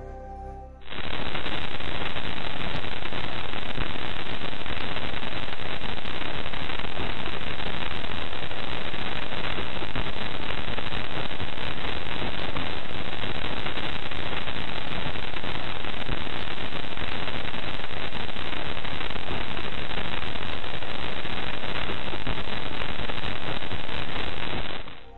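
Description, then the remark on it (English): Hundreds of microscopic impacts of dust from asteroids and comets hitting a space probe's sensitive instruments form a dense, steady crackle like old TV static, countless tiny pops blurring together at a constant loud level for over twenty seconds, with no voices. “microscopic dust colliding with the probe's sensitive instruments”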